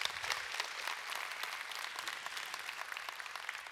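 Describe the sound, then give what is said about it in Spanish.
A church audience gathered on the last day of the year applauds steadily, a dense, continuous patter of many hands clapping at a fairly even level throughout, with no voices standing out. “Démosle un aplauso a todas estas personas.”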